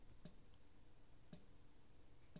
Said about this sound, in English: What the fuck is that? It's a clock. Is it really a clock?